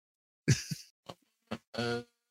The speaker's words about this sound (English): Yeah, crickets. Y'all hear them crickets? I can see that tumbleweed roll by.